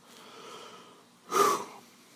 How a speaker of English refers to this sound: Frank stares up at the descending floor light, sweat beating on his forehead, panting heavily.